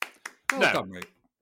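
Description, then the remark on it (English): A few sharp hand claps in a loose rhythm, with a voiced exclamation overlapping the later claps before a final clap rings out. “A round of applause.”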